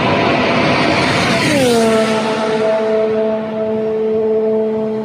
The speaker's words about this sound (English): Let's take a look here at the Haas VF21 out on track.